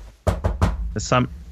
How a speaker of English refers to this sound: Was that you? I heard a knock on the door.